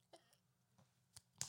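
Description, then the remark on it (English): A few quiet, sharp hand claps land at uneven intervals over a low steady hum, the last one the loudest. No one speaks. “Can you clap? Clap.”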